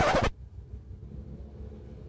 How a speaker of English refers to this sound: Bro, we have some of the cleanest air, minus that stupid truck that's making a bunch of noise.